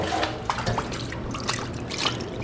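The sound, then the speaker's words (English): A steady gush of old beer pouring out of an upturned keg and splashing into a trench, with scattered drips and gurgles, continuous with no voices. “Allow all that old beer to pour out.”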